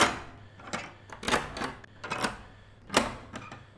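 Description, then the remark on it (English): The latch of a front door is thrown in a series of sharp metallic clacks and rattles, several uneven clicks and clunks spread over a few seconds, with no voices. “This is my front door. I'll just throw the latch.”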